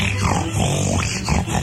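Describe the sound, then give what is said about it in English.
Arnold, the pig from the Green Acres TV show, grunts in a steady, throaty run of low snorts and rumbles, loud and unbroken for under two seconds, with no talking over it. “Today, we have a special guest in the studio, Arnold, the world-famous porker.”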